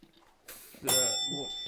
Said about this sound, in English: There's the jingle. There it is. Brilliant. So say the segment and then hit the bell.